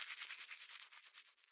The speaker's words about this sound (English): Morning arrives. Shower. Brush teeth.